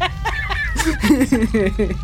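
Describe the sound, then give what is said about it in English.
A goat bleats up close in one long, quavering call, its voice wobbling in rapid pulses for about two seconds over a low background rumble. “So this is goat number 75.”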